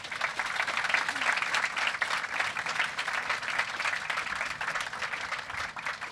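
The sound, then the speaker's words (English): Sustained audience applause for a panel, many hands clapping in a dense, steady wash of bright noise that holds fairly even in loudness for about six seconds, with no voices standing out. “I think for now, if we could give our panel a round of applause, that'd be great.”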